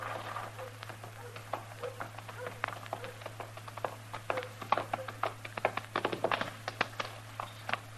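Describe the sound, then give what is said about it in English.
The hooves of two horses coming out of a stable clop in an uneven, busy pattern of sharp knocks, growing denser toward the end, over a steady low electrical hum. “They're coming out of the stable over there. Well, what's he got two horses for?”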